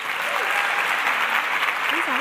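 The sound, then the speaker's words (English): Steady, dense applause from a large crowd at a writers' festival welcoming a performer to the stage, a continuous wash of many hands clapping at once, with a few faint voices or whistles rising through it. “So please join me and let's get our clapping into formation to welcome to the stage”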